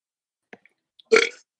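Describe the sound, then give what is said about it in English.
A short, soft burp rises after a couple of tiny clicks, lasting about a third of a second with a breathy, rumbling texture before fading out. No talking. “That was kind of weak burp.”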